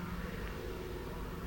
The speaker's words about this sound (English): And an aeroplane just going overhead now.